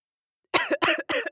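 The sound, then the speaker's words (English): Three sharp, harsh coughs in quick succession, fairly loud, with short gaps between them and no talking. “This cough is just not COVID, I promise.”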